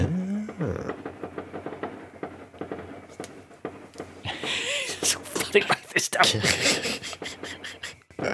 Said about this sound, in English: What the fuck? Who is having a fireworks party right now? I'm going to cut this out, but what the hell?